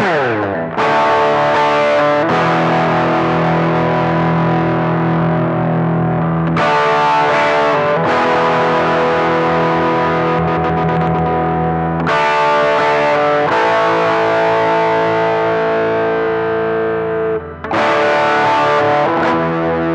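A heavily distorted electric guitar plays a chugging riff of sustained, buzzing power chords, loud and steady, broken by brief sharp chord changes every few seconds, with no voices.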